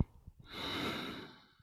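A single long, heavy exhale, a breathy rush that swells and slowly fades over about a second, with no speech.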